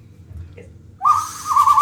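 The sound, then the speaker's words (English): A person imitates an owl hoot: after a second of near silence, one loud, drawn-out tonal call that wavers briefly midway and carries on to the end. “And what am I supposed to do when I hear this owl noise?”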